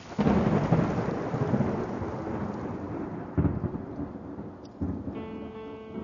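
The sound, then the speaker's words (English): A loud rumble of thunder rolls over steady rain, with a couple of fresh booms breaking in before fading into continuous rainfall; no one speaks. “A storm is coming. Crash goes the lightning. Boom goes the thunder.”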